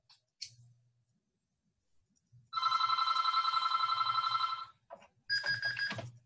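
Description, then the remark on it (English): A phone rings in two loud bursts of rapid, trilling bell tones, the first about two seconds long and the second shorter, with a few soft clicks and low bumps around them. “So wait, let me turn off my phone here.”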